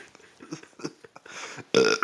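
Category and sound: human body sound, burp into the microphone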